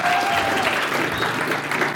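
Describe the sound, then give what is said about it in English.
Steady applause from an audience at Ridgeview, welcoming a pastor to the mic. A dense wash of many hands clapping at an even, fairly loud level, with no voices standing out above it. “That I don't get applause when I step up to the mic.”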